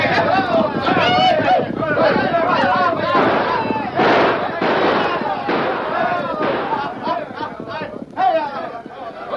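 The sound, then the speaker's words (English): A rattle of gunshots cracks in scattered, rapid bursts, loud, over a busy background of voices and commotion, in a nameless town of the American West. “Day and night, the rattle of gunshots banged away.”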